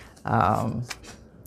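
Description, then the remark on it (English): Paper handling: a short rustling shuffle followed by two quick, crisp snips like scissors cutting paper, fairly quiet, with a brief low voice murmur early on, as paper scraps are fussy-cut on a desk. “So just going to be doing a little fussy cutting, blasting through some scraps, scrap blasting, lots of paper, lots of stuff on the desk.”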